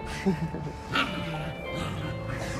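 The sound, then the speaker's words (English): A person does a brief, rough growling imitation of a dog, a couple of low gravelly bursts, with faint background noise around it. “they think they're freaking pit bulls or lions. Yeah, no, especially Marlo. Marlo's got that growl”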